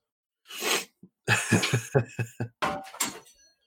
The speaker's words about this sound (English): I coughed, and like a bunch of people at me, like, I don't have the Rona.